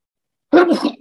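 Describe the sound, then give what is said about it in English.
A single forceful human sneeze bursts out after a moment of silence, loud and explosive, then trails off quickly. “Strong sneezing. Very strong.”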